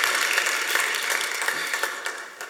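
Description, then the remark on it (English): A crowd applauds for a new kids ministry director, a dense wash of many hands clapping at an even, moderate loudness that begins to taper slightly toward the end. No voices are heard. “She's probably running around with kids, so I would tell y'all to clap, but y'all can clap for her too.”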